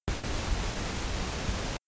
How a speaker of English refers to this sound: I think your battery and your transmitter's gone. We just heard white noise.